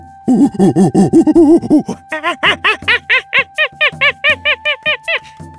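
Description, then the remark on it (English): A large long-haired monkey with long black fur, standing on a branch, lets out a loud, defiant howl: a rapid run of about twenty rhythmic hooting calls that start low and throaty, then jump to higher, squealing pulses, with no talking. “Their ringleader stopped on a branch up ahead and let out a defiant howl.”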